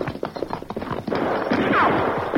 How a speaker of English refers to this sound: Quick down, quick. Shots come from ridge just ahead.